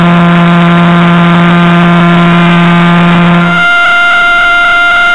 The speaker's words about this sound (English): So we just heard the sound of a few different pulsars there.